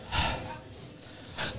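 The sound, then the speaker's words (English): A voice imitates heavy breathing: one long, loud, airy huff followed after a pause by a shorter sharp breath, with nothing else around them. “And all of a sudden I'm just like breathing really hard, and then I'm noticing like it feels like there's something like entering me, if that makes sense.”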